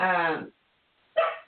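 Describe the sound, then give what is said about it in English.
Two sharp dog barks, the first a longer ringing yelp and the second a rougher, shorter woof, separated by a brief silence, with no one talking. “Sorry, my dogs are really going in this morning.”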